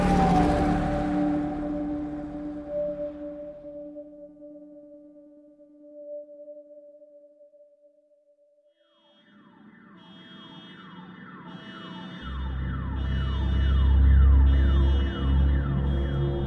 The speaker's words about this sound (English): All of a sudden, that pedal went to the floor. The lights were on, the siren was on, and we were hauling.